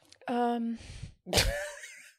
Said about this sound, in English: Please forgive that yawn.